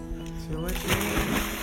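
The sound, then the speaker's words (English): A short vocal sound gives way to a loud splash as a man jumps backwards into his cold swimming pool, followed by a second of churning, sloshing water. “he just jumps backwards into his pool”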